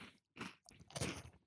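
A milk chocolate oaty biscuit is bitten and crunched, three dense, crackly bursts of chewing separated by brief pauses, with the last crunch the loudest and longest. No one speaks.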